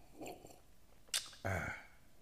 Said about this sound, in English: So the last few days, while I'm sipping on my wine real quick.